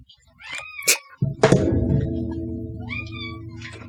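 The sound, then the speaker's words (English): A cat meows a few times, short tonal calls mixed with a thump and a sustained low rumbling noise in the background; no one speaks. “He's always like asleep in this room when I start recording, and then by 8:39, he starts wanting to go upstairs and see if his food is there.”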